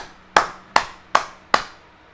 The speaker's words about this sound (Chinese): 拍痰的感觉要是震动，因为它要震动你的肺部，把那个痰给震下去，所以要有共振的感觉，声音像是这样。